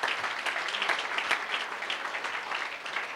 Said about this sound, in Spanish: Y luego lo que, amén, de un aplauso si se lo va a dar al Señor en esta noche.